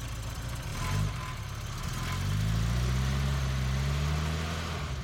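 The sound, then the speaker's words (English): A van engine idles with a low, steady rumble, then revs up as it pulls out of a college parking lot, its droning pitch climbing and holding for the last few seconds. No one speaks. “I dialed in the route again on my phone and pulled out of the college lot.”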